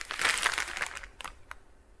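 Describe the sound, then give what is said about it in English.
Soft crinkling of a 500 gram plastic food packet being handled while its cooking instructions are read, a dense rustle for the first second, then a couple of sharper crackles before it quiets. “And let's put a timer for, let me read the packet.”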